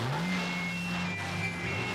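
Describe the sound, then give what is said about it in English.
A stolen car's engine roars, its pitch climbing briefly as it accelerates, then holding a steady loud drone as the car speeds through. No one speaks. “Captain, some nut went through here in a stolen car.”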